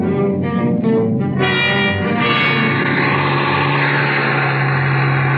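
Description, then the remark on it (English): A bus engine revs hard and accelerates on snow-covered mountain roads, starting with a few quick throttle bursts and then settling into a loud, steady rising roar, with no voices. “Those snow-covered mountain roads weren't exactly my idea of a speedway, but I gave my motor the gun.”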